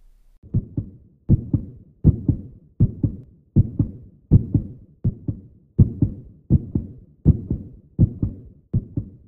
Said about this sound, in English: Sometimes, when I listen to my heartbeat, I learn about my feelings and how I want to express myself in the world.